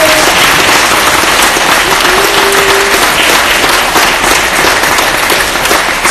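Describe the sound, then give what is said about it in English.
A dense, steady round of applause from an audience fills the whole stretch, loud, many hands clapping at once with no pauses and no talking. “So if you guys give Bill a round of applause.”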